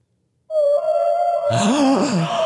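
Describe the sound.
A person imitates a humpback whale call with a long, steady, hummed tone that then breaks into warbling, sliding low groans and moans, fairly loud, with no words spoken.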